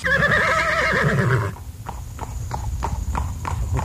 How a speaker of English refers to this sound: I am your humble host, and now I'm mounting once again old Topper. Oh, he's a big horse. Oh, easy, big fella. Easy.